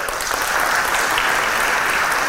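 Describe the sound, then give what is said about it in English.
Steady audience applause for a student's praised project, a dense wash of many hands clapping at once, loud and continuous without pause. “You've got a double applause for that one.”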